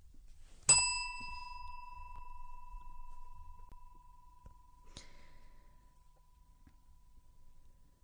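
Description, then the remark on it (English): A bright handbell is struck once to cut a speaker off and rings out clearly, its tone lingering for several seconds before a second, softer tap sounds partway through the fade. “Can't bell me off and then not fill in the silence.”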